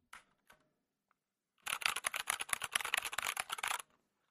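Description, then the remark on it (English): Mechanical keyboard keys clacking in a rapid, dense burst of crisp clicks for about two seconds, fairly loud, after a few isolated taps at the start. “Razer is claiming this will provide a mechanical feel, including that wonderful click. Everyone knows that click. When you take a mechanical keyboard and hit a button.”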